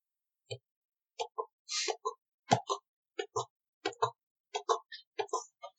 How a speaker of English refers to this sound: Oh, that's the horse. Yeah. I was like, what? What is that sound? What's going on?